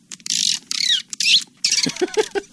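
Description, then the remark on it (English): A man mimics monkey chatter, performed to picture as a sound effect, with rapid, shrill squawks and chirps in quick bursts, loud, with short gaps between the shrieking calls and no other talking. “Enough monkey.”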